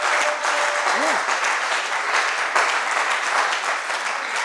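A crowd claps for Jesus steadily and loudly, a dense wash of many hands with no clear rhythm, sustained throughout, with a brief faint vocal sound early on.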